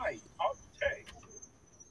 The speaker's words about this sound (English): I can hear those crickets, man. They're really pissed off.